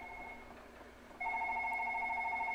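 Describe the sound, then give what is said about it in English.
A telephone rings with a steady electronic trill, fading briefly before it sounds again louder and continuous. No one speaks over it, and the ring stays clear. “They never touched on this phone either, did they?”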